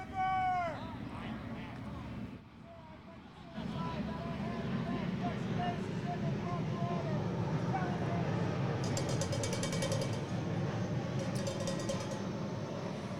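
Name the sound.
airplane flying overhead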